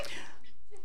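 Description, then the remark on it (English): A single quick sneeze from someone in the audience, a short breathy burst that fades fast, fairly faint, with a soft murmur trailing after it. “Bless you.”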